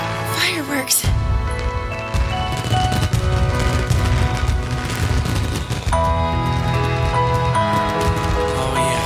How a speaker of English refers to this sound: Supposed to close the festival with a fireworks display.